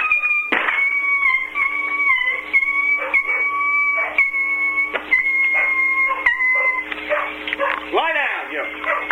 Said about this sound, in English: This damn dog. There he goes.